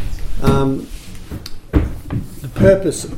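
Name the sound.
door being closed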